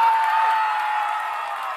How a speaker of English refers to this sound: And they're excited as they slowly peace out. That we won the verses. Lifeguards won the verse memorization. That's what they're all cheering about there. And everybody's just going crazy.